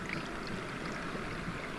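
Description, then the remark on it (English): Fairly clean water poured through a cloth, which catches any particulates, into a cup until it is full; a steady, continuous trickling splash at a fairly soft level, with no talking. “Carefully, so it's actually quite clean anyway, this water, but we're still going to pass it through the cloth.”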